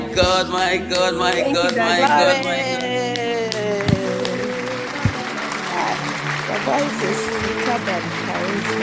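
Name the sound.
audience applause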